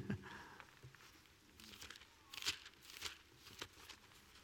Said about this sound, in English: I hear pages turning.